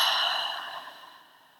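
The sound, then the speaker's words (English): A single soft, airy exhale through the mouth after breathing in through the nose, fairly quiet, starting breathy and gradually fading away over about a second and a half, with no talking. “Breathing in through your nose and out through your mouth.”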